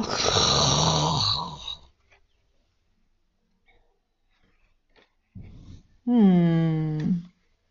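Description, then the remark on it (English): A voice imitates snoring with a long, rough, rumbling snore, then after a quiet pause a short breathy inhale and a loud, nasal, wheezy snort-like snore, clear. “Snore, snore, snore, snore, snore, snore, snore. Snork, snork, snork, snork.”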